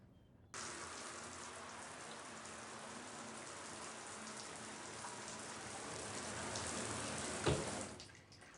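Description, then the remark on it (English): A shower starts abruptly and runs steadily, a dense, even hiss of spraying water that holds for several seconds with a brief knock near the end before cutting off. No voices are heard. “I'm gonna grab a shower”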